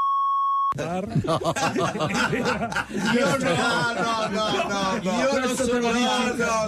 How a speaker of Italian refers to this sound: No, meno male che c'era il bip sopra e non si è sentito.